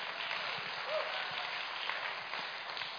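An audience applauds, a dense, steady wash of many hands clapping at an even loudness for the whole stretch, with no voices standing out.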